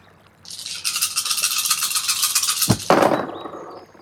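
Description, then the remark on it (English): A handful of dice rattle steadily for a couple of seconds, then land with a sharp clack and a brief, loud clatter that fades, rolled in a tabletop role-playing game and showing mostly fives and sixes for a total of 44. No one speaks. “Now I roll all these fives and sixes.”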